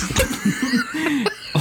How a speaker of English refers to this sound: Yeah, I felt it that time. You hit me like your girlfriend. Oh. And make me cough